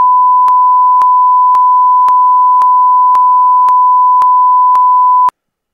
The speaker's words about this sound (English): If you were to guess what came out of his mouth, and I'm willing for you to say it, and we'll just beep it out accordingly, what do you think came out of his mouth to the ref?